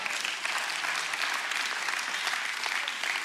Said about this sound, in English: Thank all 17 of y'all for that rousing applause and celebration.